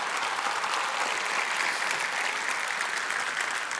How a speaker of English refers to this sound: So we wanted to celebrate them today. Thank you guys for being here. Give them one big round of applause. Thank you guys so much.